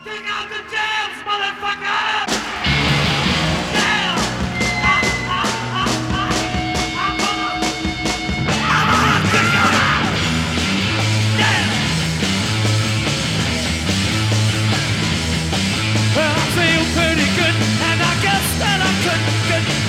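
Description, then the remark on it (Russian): A loud, raw late-1960s rock record kicks in after a brief noisy intro: pounding drums, distorted guitars and shouted vocals driving steadily throughout at full volume. “Музыка говорит об этом, и вот мы сегодня слушаем именно такую пластинку, которая просто кричит о том, что 60-е заканчиваются.”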